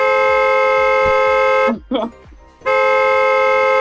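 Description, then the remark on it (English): A voice imitates a car horn, as a driver honks in a line of cars stopped by a flagger: two long, loud, blaring honks, separated by a short break with a brief vocal sound in between. “And the kids were like, what's that guy beeping for?”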